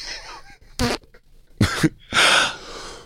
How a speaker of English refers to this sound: Oh, she just did a little toot.